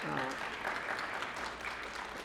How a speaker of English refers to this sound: I assume you're clapping for the Holy Spirit. It's the only way we made it 18 years.